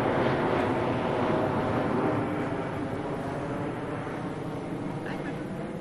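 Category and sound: vehicle, low-flying airplane passing overhead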